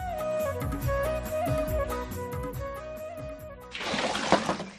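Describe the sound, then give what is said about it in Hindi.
Tonal music plays for several seconds, then a loud rush of water pours out as a bucket of water is drawn from a well, for the last second. “बस एक बाल्टी पानी और निकाल ले फिर हो गया।”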